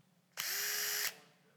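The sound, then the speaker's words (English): A power drill whirs steadily for under a second, a loud, even motor whine with a bright high-pitched buzz that starts and stops abruptly. “What is it? A drill. It's a drill.”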